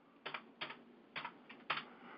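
Five quick papery rustles at uneven intervals, like pages being flipped one after another while looking up Psalm 149, fairly soft with no one talking.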